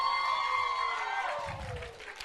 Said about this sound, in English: They've taken that opportunity we gave them this night, and haven't they done a great job? Let's give them a big cheer.